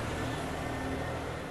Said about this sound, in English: So, let me just let the garbage truck go by. Look at that. The government's always interfering with my podcast.